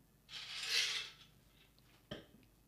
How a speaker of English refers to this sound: Forgive the background noise there. I was getting myself a refill.